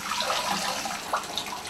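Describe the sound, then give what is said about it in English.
Shower water runs steadily in a broad, constant hiss, fairly loud, while someone's hair is washed, with a few brief splashes breaking through near the end. “I hate this shower, mate.”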